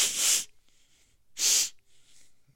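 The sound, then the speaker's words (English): Two loud, sharp nasal sniffs about a second apart, each a quick burst of breathy air drawn in, with faint hiss lingering between them. “Sniffing.”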